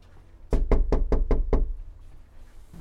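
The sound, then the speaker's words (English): Six quick, evenly spaced knocks on a front door by a volunteer canvassing door to door for the Obama campaign to see if residents are home, loud with a solid low thud, followed by a second or so of quiet. “find the door, find the address, and then knock on it, see if they're home,”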